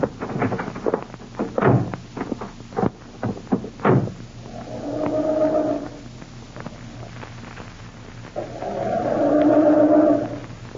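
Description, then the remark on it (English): A few dull thumps, then a car engine in a garage on a cold day cranks twice with a droning, whining groan, each attempt lasting a couple of seconds and dying away without the engine catching, because the distributor cap is missing. “I'm starting this. I'm afraid it won't go.”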